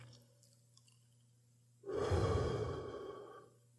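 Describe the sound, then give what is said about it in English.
A single deep inhale rushes into the microphone during a breathing exercise, a breathy whoosh lasting under two seconds after a quiet pause, with a faint low hum underneath and no talking. “Focus all your awareness right now on your breathing. Take an inhale.”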